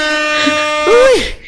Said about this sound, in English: And if you just did, huge shout out to you. Ooh, air horns for you.